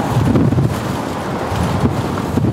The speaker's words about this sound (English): It was a very blustery day in parts of the South Coast today, with strong winds causing some power outages.